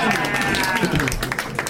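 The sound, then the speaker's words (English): A burst of audience applause as the film Orange County is named during a movie guessing game: dense, steady clapping from many hands at a fairly loud level, mixed with cheering and whooping voices throughout the short stretch. “That's the first time that movie has gotten a round of applause.”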